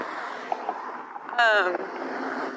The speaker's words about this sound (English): Now it's really loud because the traffic just got the green light.